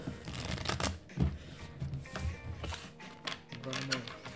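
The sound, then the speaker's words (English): Playing cards being shuffled for a poker deal, a run of quick papery riffles and snaps lasting a few seconds, with faint voices murmuring in the background. “for the deal.”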